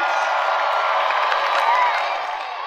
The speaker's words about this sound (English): Congratulations, thank you. She actually clapped for him.